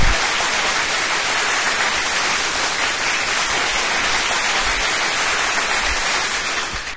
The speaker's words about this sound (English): It's 9 seconds. 9 seconds of applause. That's really long, isn't it?